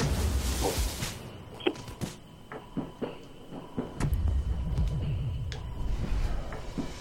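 Movie trailer audio plays, a dense cinematic mix of deep rumbling bass and scattered sharp impacts and clanks, swelling louder about midway, with no clear voices.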